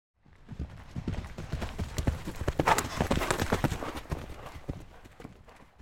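horse hooves clip-clopping

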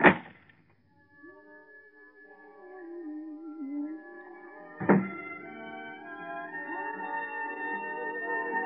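door opening

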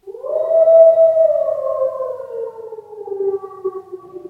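wolf howling

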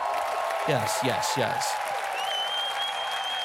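cheering applause sound effect

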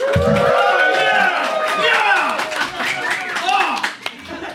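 audience cheering and clapping

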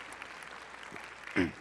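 audience clapping

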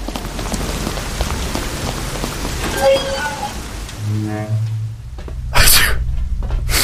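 rain falling

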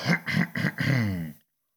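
cough

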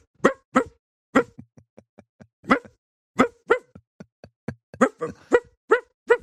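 dog barking

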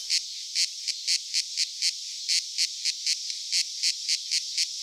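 cicadas buzzing

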